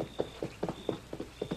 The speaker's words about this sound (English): Father, I hear a horse. Aye. Just one horse, and he's walking, not galloping.